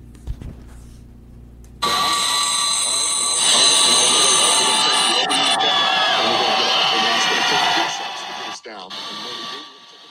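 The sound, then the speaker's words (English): A huge crowd of Bills Mafia fans welcoming the Bills home at 3 in the morning erupts into sustained, roaring cheers and shouts that swell suddenly after a quiet start, holding loud and dense for several seconds before fading near the end. “Huge crowd at 3 in the morning welcoming the Bills.”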